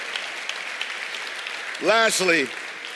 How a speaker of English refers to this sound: Come on. The Lord a hand clap. Yeah.